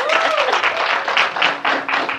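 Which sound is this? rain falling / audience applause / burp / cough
audience applause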